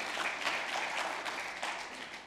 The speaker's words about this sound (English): Come on, do you see that today, church? Clap your hands if you see that this morning.